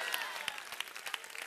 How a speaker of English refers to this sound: Somebody clap your hand and shout, fight back.